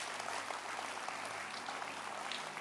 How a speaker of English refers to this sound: Can you clap your hands for yourselves?